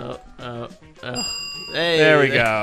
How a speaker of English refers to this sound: Yeah, give me the bell. That's nice. Faster.